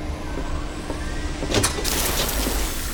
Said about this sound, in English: What happened? There's something wrong with the engines. You broke my ship!